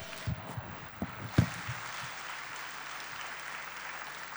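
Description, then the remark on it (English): An audience at a church service claps together in a steady, dense wash of applause, with a few sharper, louder claps and low thumps near the start before it settles into even, sustained clapping. “If you are clapping, you want to clap even better to the glory of God.”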